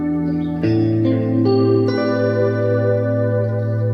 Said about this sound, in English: This is the famous guitar sound and guitar player who's worked with everyone from … to … to his own solo band….